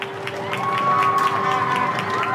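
Scattered clapping from a crowd in the street in Hoxton, East London, UK, applauding coronavirus frontline medical workers at 20:00 on a Thursday, with a long steady whistle held over the applause and a background of whooping and cheering voices, fairly loud throughout.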